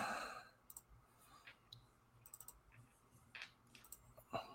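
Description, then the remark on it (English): Several soft, sharp computer mouse-button clicks come at irregular intervals, fairly quiet, with faint breathing and room noise between them and no one talking, as someone shares their screen to pull up team stats. “Apparently clicking the buttons is not my forte today.”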